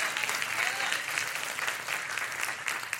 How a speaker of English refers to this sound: Only the husbands clapped on that one.